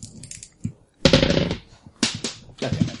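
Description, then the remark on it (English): Dice clatter and tumble across a hard tabletop in three quick, bright bursts of rattling clicks, fairly loud, with brief pauses between the rolls. “The dice are already running away.”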